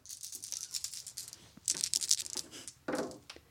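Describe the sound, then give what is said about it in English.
Dice, whose sixes are marked with moons, rattle and clatter in a series of quick, sharp clicks, with louder bursts toward the middle and end as they tumble and settle. No voices are heard. “Those are lovely dice.”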